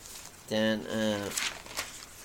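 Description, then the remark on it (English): Newspaper pages rustle in two quick, crisp bursts as someone flips quickly through the day's paper, just after a short voiced sound, fairly soft against a quiet background. “So, and then, well, there's a good few bit of Gaelic there in the paper today. I'm just going flying through this, really.”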